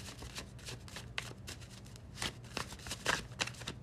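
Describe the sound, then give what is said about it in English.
A tarot card deck being shuffled, with repeated crisp riffling bursts and soft papery slides in an uneven rhythm, no voices. “Let me give the deck a few shuffles and we can get into it.”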